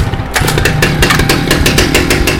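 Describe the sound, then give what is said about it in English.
A chainsaw engine is started with a pull of the cord, bursting to life and roaring loudly and steadily, its rough, pulsing buzz filling the whole moment with no voices. “I ripped the cord and let the engine roar.”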